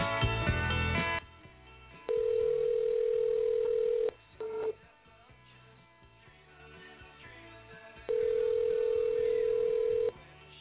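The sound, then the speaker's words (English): A telephone ringback tone sounds in two long, steady bursts of about two seconds each, separated by a pause, as an outgoing call rings unanswered; faint background noise fills the gaps. “What is he up to that he's not answering the phone?”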